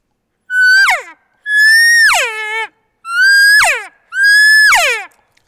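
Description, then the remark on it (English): Four loud cow elk calls blown on a hand call, each a nasal mew that holds steady then slides downward, evenly spaced with short pauses between them and no talking. “When he picks up that aggressive bugle, what I'm going to do right away, as soon as he does it, I'm going to give him some very interested cow calls.”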